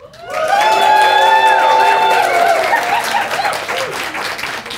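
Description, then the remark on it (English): A crowd bursts into loud applause and cheering for finalists on stage, with high sustained whoops and yells riding over steady clapping that continues for several seconds before easing slightly. “And let's hear your approval.”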